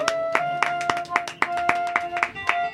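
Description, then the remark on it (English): Applause comes as a run of about ten sharp, loud claps in a fairly steady beat, with sustained musical tones humming underneath throughout. “Can I ask you from the bottom of my heart to give John a nice round of applause?”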